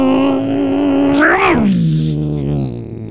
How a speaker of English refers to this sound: if you hear the street racing in a sideshow, you can call Fresno PD